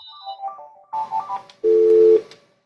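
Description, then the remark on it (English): An office telephone on The Keys 107's office line rings electronically: a few short warbling beeps, then a loud, steady mid-pitched tone that holds for about half a second before cutting off. No one speaks. “The Keys 107, somebody's calling us on our office line.”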